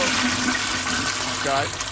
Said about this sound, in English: Flush It Friday. 3 hours of us hitting the flush sound effect.